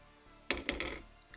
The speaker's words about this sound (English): Oh, please, dice, don't fail me now.